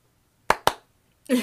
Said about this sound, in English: I don't have any transition thingies. I don't know how to do sounds like that. So I'm just going to clap twice every time, as if, you know, like those little light things, clap, clap.